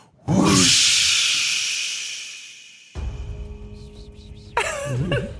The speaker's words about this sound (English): Whoosh. Wispy whoosh. The wind's coming back. It's windy day.